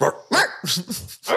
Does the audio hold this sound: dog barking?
yes